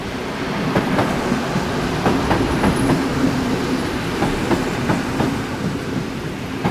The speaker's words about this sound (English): Headlights and the echo of shunting carriages roused me from memory. The engine appeared from the darkness like a snub-nosed serpent, bringing with it the bitter odour of diesel.